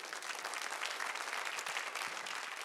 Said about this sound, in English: So give him a hand clap of praise.